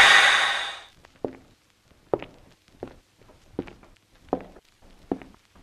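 A loud breathy exhale fades out, then six slow, evenly spaced footsteps land about every 0.7 seconds as people walk slowly to a door, with no talking.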